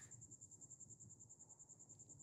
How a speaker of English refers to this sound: You can hear the crickets.